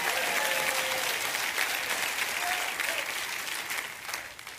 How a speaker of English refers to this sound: If you receive that, give the Lord a great big clap offering and say, we're next.